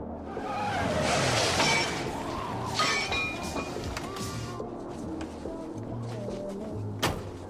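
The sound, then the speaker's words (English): A driver's car slams into a statue: a heavy crash with bursts of shattering and clattering debris, fading into a low rumble with scattered clinks and a final sharp knock. “Did that driver just hit that statue?”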